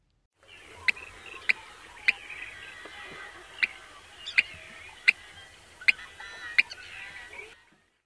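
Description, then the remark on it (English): Yellow-headed blackbird call notes, eight short, sharp chips repeated at irregular intervals over a steady background of bird chatter and noise, clear. “Yellow-headed blackbird, which is longer and almost two syllables.”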